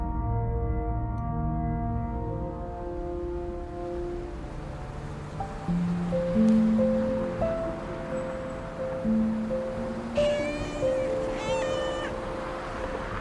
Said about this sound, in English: It all started with a meow. It was just barely audible over the bustle of the street.